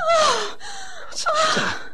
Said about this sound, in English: What did you scream for? There's a snake out there.